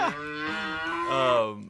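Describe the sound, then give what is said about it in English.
A single long cow moo, loud, a deep drawn-out bellow lasting under two seconds that shifts pitch slightly midway before tapering off. “Instead of paparazzi, it's just gonna be cows.”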